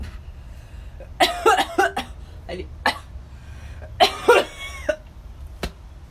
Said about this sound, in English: All right. Let me cough it out.